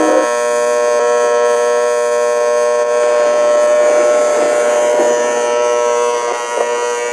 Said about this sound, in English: And we cut to really obnoxious alarm clock going off. You remember the sound of this thing? I'll put it in.